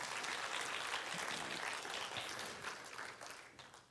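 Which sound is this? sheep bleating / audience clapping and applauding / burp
audience clapping and applauding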